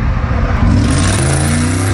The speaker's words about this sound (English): The 23-year-old takes off, seen weaving through cars on the interstate in his Dodge Charger, and then you hear a crash.